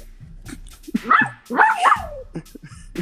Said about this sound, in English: My damn dog keeps barking. Here, I'm gonna get him out of here.